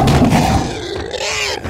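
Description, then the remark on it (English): A lion roars once, loud, as it attacks a wild boar: a rough, growling blast that starts strong and trails off into a raspy snarl within about two seconds. No one speaks. “However, just as the boar was about to sink its massive tusks into the prince, a lion attacked the boar, and the boar tumbled to the ground.”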